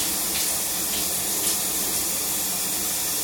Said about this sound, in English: What are you doing? Taking a shower.